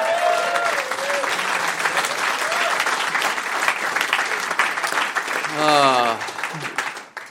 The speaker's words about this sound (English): What an amazing thing to get an applause on.